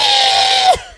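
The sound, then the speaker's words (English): A person imitates a pig's squeal with one loud, shrill, sustained cry that drops off sharply at the end, with no other talking. “You squeal like a pig.”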